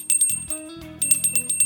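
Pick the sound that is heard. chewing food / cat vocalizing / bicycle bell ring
bicycle bell ring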